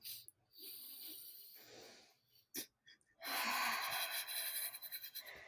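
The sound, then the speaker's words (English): Slow, deep breathing during a breathing exercise: a long drawn-in breath, a brief pause, then a long, loud exhale with a slightly fluttering, wheezy edge. “Come on, let's do some breathing.”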